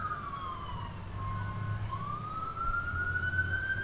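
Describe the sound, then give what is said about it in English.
A fire truck's wailing siren slowly falls and rises in pitch over a low engine rumble, steady throughout, with no one speaking. “Is it a police? Is it an ambulance? Is it a fire truck? I think it's a fire truck.”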